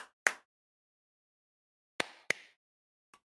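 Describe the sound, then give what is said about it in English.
Four sharp hand claps in an uneven rhythm: one, a pause of nearly two seconds, two close together, then a fainter final clap. No one speaks. “The clap heard round the world.”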